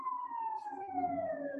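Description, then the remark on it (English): A steady emergency siren wails outside, its tone sliding slowly downward as the vehicle passes, with a low rumble of traffic beneath it and no one speaking. “I'm going to wait for the siren.”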